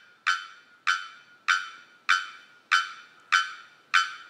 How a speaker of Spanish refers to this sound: En la selva de Trinidad, un campanero barbudo macho canta desde la copa de un árbol.